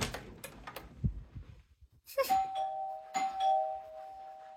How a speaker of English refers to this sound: So, give me one second, you guys. I think... Is my mom ringing the doorbell?